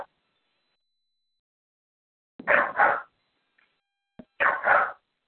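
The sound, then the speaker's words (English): A dog barks in two quick pairs, a double "woof-woof" followed after a short pause by another, fairly loud against otherwise silent surroundings. “The dog's very opinionated.”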